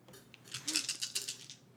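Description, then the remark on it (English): Dice rolled for a haunt roll clatter and tumble across a hard surface in a quick burst of bright, rattling clicks lasting about a second, fairly quiet, with no one speaking. “Roll that dice. Roll it again.”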